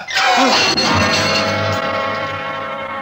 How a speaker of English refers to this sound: And then I yanked at the white light, lifted it high, and with all my strength brought it crashing down on his head.